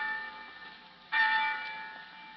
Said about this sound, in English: Next week, from hundreds of famous and well-loved campuses, the bells of our colleges will be calling to young America. Nearly 2.5 million boys and girls will respond to the call of those bells.